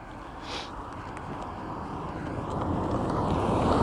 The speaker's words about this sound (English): Here comes a car. I'm out walking again.